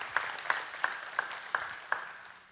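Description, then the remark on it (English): An audience applauds as a clap offering to Jesus: a steady wash of crowd clapping with sharper, evenly spaced claps standing out about three times a second, tapering slightly toward the end. “Yes, give Jesus a clap offering.”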